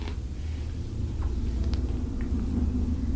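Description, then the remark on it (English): A steady, deep rumble of an airplane passing overhead, heard from inside a building, low and continuous with a slight swell toward the end, and a few faint ticks scattered on top. “It sounded like a plane.”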